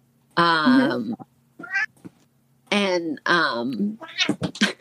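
A cat meows loudly several times, drawn-out harmonic cries with short gaps, a couple of them long and wavering, interspersed with brief chirps and rustling.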